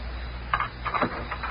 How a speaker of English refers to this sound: Wrong key. The real estate office mailed me 5 different keys.